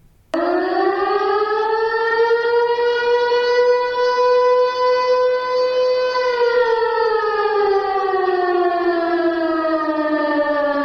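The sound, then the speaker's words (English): A loud panic alarm siren sound effect wails with a harmonic-rich tone, rising at onset and holding steady before gradually sliding lower in pitch, sounding alone without any voices for about eleven seconds. “That's right, I'm hitting the panic alarm because I don't see a world where John Gruden does not make this any worse for you.”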